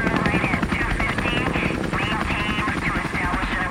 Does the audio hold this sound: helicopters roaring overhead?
yes